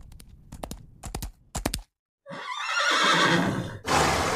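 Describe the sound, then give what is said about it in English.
Several sharp, evenly spaced clacks, then a brief pause before a horse lets out a loud, rising neigh that stays strong through the end. “You need to take care of that horse.”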